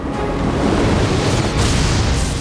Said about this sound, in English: Thor crashed to the ground between them and grabbed Loki by the collar.